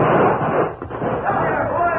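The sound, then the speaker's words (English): A sheriff and his posse open fire: a loud, dense barrage of rapid gunfire blurs into continuous crackling noise that barely lets up for about two seconds, with shouting voices mixed into the din. “the sheriff and his men moved in with blazing guns.”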